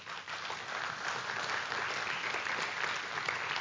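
An audience applauds steadily for several seconds to give the Lord a hand, a dense, even wash of many hands clapping at a fairly loud, constant level with no voices standing out.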